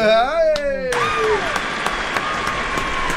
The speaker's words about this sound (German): Applaus.